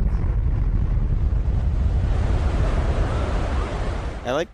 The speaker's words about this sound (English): Give us that terrible tsunami drop already